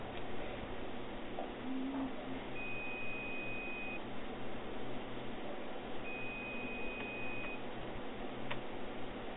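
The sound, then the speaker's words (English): A phone gives two long, steady electronic beeps a few seconds apart, each lasting over a second, over a constant low hum of background noise, with no one talking. “Answer your phone, cause wait.”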